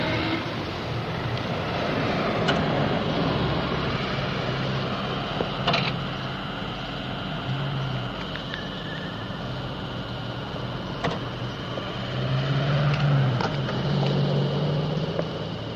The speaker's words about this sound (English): Next sound we will hear is the sound of an automatic traffic control box.